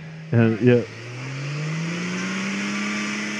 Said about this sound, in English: stuck on a rock, warming up his tires.